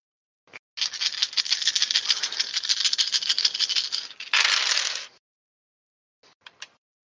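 A handful of nine dice rattles steadily in a hand for several seconds in a dense, clicking shake, ends in a brief louder clatter, then a few scattered clicks as they settle.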